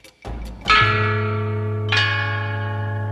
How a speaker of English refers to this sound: Of all the instruments, chime bells rank the top of the 8 tones.